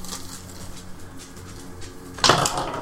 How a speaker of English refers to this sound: If you have a d20, I will roll that. This one never fails. Never fails.